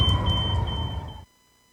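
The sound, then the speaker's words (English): A single shrill smoke alarm test beep, held steady for about a second before cutting off abruptly, with a low rumbling noise underneath until it stops. “Are you sure your smoke alarms are working? Fire kills. Test yours now.”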